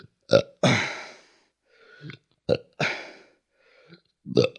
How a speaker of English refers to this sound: I have to burp. I feel like I'm out racing the burp, and I want to finish the sentence before the burp comes out, but I don't even know what the sentence is anymore.